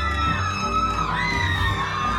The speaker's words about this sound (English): And they're all just yelling at this dude.